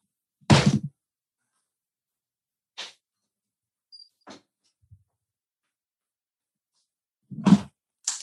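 Dogs being ushered out of a room: a heavy thump, then scattered knocks, light taps and a final door-like thud, separated by quiet stretches, with no talking.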